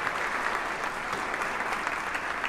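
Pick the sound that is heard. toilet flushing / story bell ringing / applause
applause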